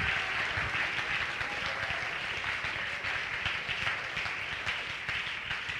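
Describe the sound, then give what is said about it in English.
A crowd claps their hands in rejoicing during a sermon, sustained, dense applause, a steady wash of overlapping claps at fairly even loudness throughout, with no distinct voices standing out. “I want you to clap your hands and rejoice for with what he is going to do.”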